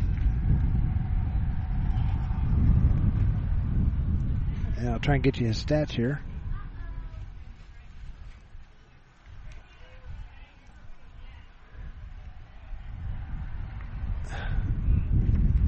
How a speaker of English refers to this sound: As it's very windy here right now. Very windy.